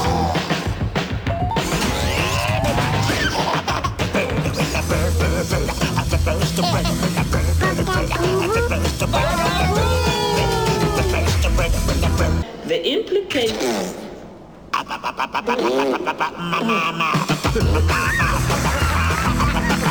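A loud, frantic remake of a 1960s novelty rock song, with yelping, swooping vocals over pounding drums and buzzing guitar, briefly thinning to a near pause before crashing back in.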